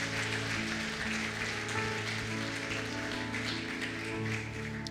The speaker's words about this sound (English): Come on, everybody, give the Lord a hand clap of praise in this place today. Come on. Hallelujah.